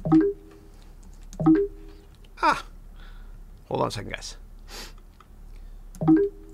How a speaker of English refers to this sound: I've got this new damn keyboard that you have to push a button to switch computers. So give me one second.